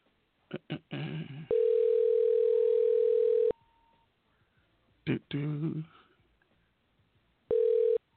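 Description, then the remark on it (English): An outgoing phone call ringing: a steady ringback tone sounds for about two seconds, goes quiet, then starts again, with brief bursts of voices in the pauses. “Answer the phone.”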